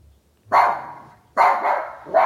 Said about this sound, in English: Well, that was really exciting. It's just bark, just sort of yapped, really. I'd describe that as yapping.